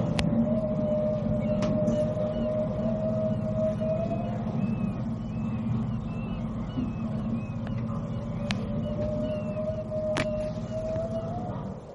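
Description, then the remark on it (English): Long, drawn-out humpback whale song, with moans and rising and falling chirps, is picked up underwater by a boat's sonar. It carries over a steady low engine-like rumble and occasional sharp clicks. “because although we hear the birds quite clearly, they're chirping, they're singing, but the sonar here on the boat is also picking up the song of the whale.”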